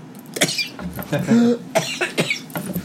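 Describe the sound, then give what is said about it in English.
A person coughs repeatedly after getting a little powder down their throat, a series of harsh, irregular coughs spread over a few seconds with brief gaps between them, fairly loud and with no talking. “I got a little powder down my throat.”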